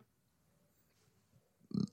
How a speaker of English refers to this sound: Excuse me. I am burping. It's because I had a soda. I had a little Sprite.